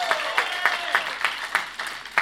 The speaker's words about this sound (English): And then I just want to see like 2 years or less, 2 years or less, raise them up high, 2 years or less. Let's give these folks a big round of applause.